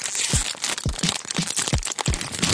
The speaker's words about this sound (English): A study found people actually change the way they eat in order to make their chip crunches louder. And many people also say they love the crinkly noise that a chip bag makes.